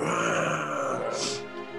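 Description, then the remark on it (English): A person voices a drawn-out, throaty roar lasting about two seconds, loud and gravelly with a rough growling texture and a brief harsh, breathy swell partway through. “You hear her kind of cry out, and there's this massive roar.”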